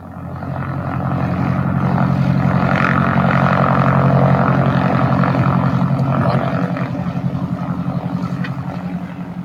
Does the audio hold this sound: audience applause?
no